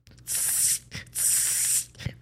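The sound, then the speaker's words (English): A voice imitates an aerosol spray can of wash-out white hair dye being sprayed, with two sharp hissing bursts, each about half a second long, separated by a brief pause. “Like he was spraying like it.”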